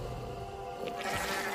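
A goat bleats in a drawn-out, wavering cry that carries through the whole moment, with a brighter, rougher burst toward the end and no talking.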